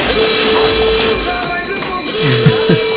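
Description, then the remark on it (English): A loud, steady alarm blares continuously, its shrill layered tones holding one pitch over a rumbling, clattering background for about three seconds. “and we might have to push the button here, black character named Smokey. We need to talk about Smokey. Alarm!”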